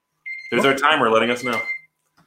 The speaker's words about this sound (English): There's our timer letting us know.